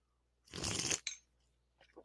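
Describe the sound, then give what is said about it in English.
A loud slurping sip of a freshly poured drink, one noisy half-second draw followed by a quick wet smack and a faint trailing sound. “That was a really good sip, right?”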